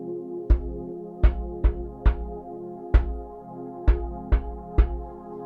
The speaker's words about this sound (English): You approach the door, and somehow you know the particular knock to give.